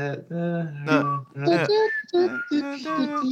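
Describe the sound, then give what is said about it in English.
Someone whistles an imitation of the Wii console music, carrying a bouncy melody in a run of short, pitched notes with brief gaps, fairly loud and with no other sounds around it. “Okay, so how do you hum the that Wii music?”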